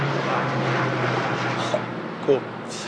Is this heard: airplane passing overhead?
yes